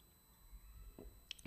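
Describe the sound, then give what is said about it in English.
A quiet sip of water: a few soft, wet mouth and swallowing sounds near the end of an otherwise hushed moment, with no one talking. “I was having a sip of water.”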